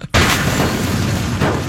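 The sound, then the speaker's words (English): A sudden, loud explosion bursts in after a brief quiet, followed by a sustained roaring, crackling rush like shattering glass and debris, with a second burst near the end. No one speaks. “That's an explosion. All that was just glass breaking or something.”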